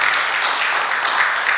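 A crowd applauds with steady, dense clapping that stays loud and even throughout, a bright continuous patter of many hands with no voices heard.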